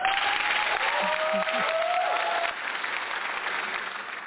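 A studio audience applauds steadily to welcome a guest, dense clapping filling the whole moment at a loud, even level and tapering slightly toward the end, with a faint tone and murmur mixed underneath.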